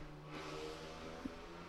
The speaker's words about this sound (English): Sorry, there was a motorcycle. It was so loud.